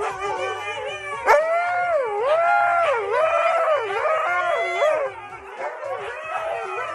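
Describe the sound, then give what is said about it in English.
A pack of about ten huskies in one room at a doggy daycare howls and yowls together in a chorus of overlapping, wavering voices, rising and falling in pitch, loud, continuous for several seconds with no one speaking. “I don't know what this doggy daycare, but there's like 10 of them in the same room. This is Husky Car Alarm.”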